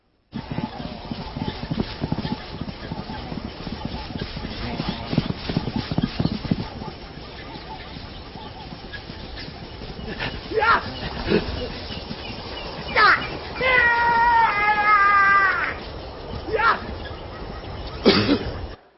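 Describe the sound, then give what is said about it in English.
A gazelle running from a cheetah: a quick, drumming patter of hooves for several seconds, then a few sharp strikes and a short burst of high, harmonic cries or bleats. “Here's a gazelle running from a cheetah.”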